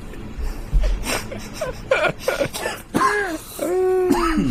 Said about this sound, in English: Shit, he's coughing.